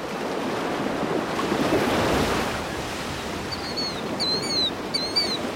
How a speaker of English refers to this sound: Waves rolling through the ocean look completely separate from the salty air above as they crash down and sink back into the depths.